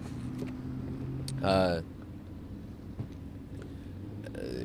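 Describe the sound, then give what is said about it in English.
Traffic noise outdoors as a motorcycle and loud cars pass: a steady low engine rumble, with one brief, louder revving surge early on before the drone settles back to a constant background hum. “We outside, motorcycle, loud cars.”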